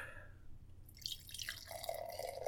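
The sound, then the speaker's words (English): Uinta Brewing Ellipses Barrel-Aged Oatmeal Stout, about 11 percent, pours from a 12-ounce can into a glass, a soft, fizzy splashing stream that rises slightly in pitch as the glass fills. It is fairly quiet, with no voices. “The pour.”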